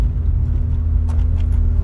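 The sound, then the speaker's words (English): A heavy Ukrainian truck in Ukraine rumbles loudly and steadily, a deep low engine drone with a faint hum on top, holding constant with no speech. “I know that it was in the Ukraine, and all the note says is that a car crashing? ? Nope. Just a Ukrainian truck.”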